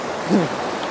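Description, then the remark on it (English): Ocean waves from a passing set washing steadily over rocks in a continuous hiss, with a brief muffled voice-like murmur rising out of the roar for a moment. “Alright, I think after this wave.”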